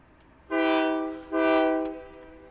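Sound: train passing with horn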